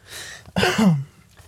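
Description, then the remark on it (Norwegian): A person clears their throat of phlegm once: a soft breathy rasp, then a loud, gravelly voiced hawk that drops in pitch and stops abruptly. No talking. “Nei, jeg kremter og harker fordi jeg har slim i halsen.”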